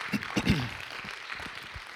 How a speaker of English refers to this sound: God bless you. Go ahead and let's give her one more hand clap.